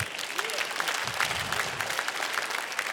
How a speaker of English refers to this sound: That's a good place to clap. 4 times. Come on.